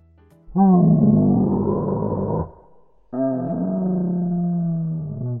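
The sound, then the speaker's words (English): A dinosaur roar sound effect: two long, loud bellowing roars with a deep rumbling tone, separated by a short pause, and no talking, following an answering-machine greeting from an old rotary phone at the Exploratorium. “Leave me a message after the dinosaur roar.”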